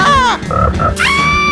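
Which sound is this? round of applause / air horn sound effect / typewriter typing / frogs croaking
frogs croaking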